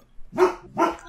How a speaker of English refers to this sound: Is your dog barking because he wants a chicken neck?